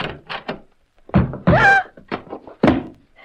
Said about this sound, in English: Stand back, Mike. I'll open the door.